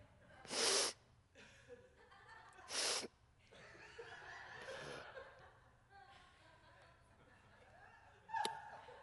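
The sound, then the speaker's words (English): Three sharp, breathy gasping inhales from someone trying to breathe in without breathing out, the first two spaced a couple of seconds apart and the last after a longer pause, with quiet murmur between them. “Just keep trying to breathe in without breathing out.”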